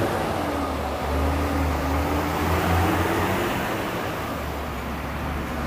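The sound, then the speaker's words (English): Big trucks rumble past on a street, a steady, loud wash of engine drone and road noise with deep low humming throughout and no voices. “Yep, big old trucks.”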